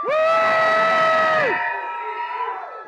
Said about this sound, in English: Okay, so if you are a kid or you feel like a kid at heart, I want you to cheer as loud as you possibly can, okay? On the count of three. Ready? One, two, three.